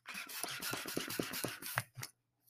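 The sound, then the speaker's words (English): A hand pump inflates a balloon nearly the whole way, to make a balloon heart, with a quick run of raspy, hissing air strokes for about two seconds. It pauses briefly, then another short rush of air follows. “Take your balloon. You pump it up pretty much the whole way.”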